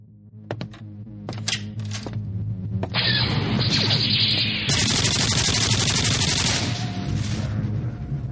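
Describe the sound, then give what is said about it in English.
Video game gunfire from a double-barreled nuclear plasma cannon: a few sharp zapping blasts, then a loud, sustained barrage of crackling energy fire over a low throbbing hum, continuous, with no one talking. “Well, I just conquered the outer rim planet of Pico Pond with my trusty double-barreled nuclear plasma cannon. Well, I just did in this video game.”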